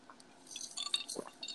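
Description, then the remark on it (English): Ice clinks lightly against a glass, a few bright, high-pitched ticks scattered over a second and a half, with a soft liquid slosh in between. Quiet, with no talking. “And you are sipping on, so I heard ice.”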